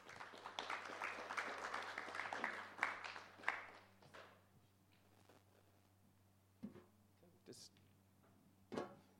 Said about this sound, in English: And so I'll just invite them up. Why don't you just give them a big round of applause?